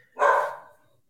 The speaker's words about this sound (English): You got that dog in you, or is that a little dog in your place?